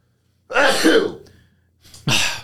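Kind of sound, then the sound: human body sound, sneeze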